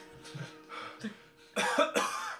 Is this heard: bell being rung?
no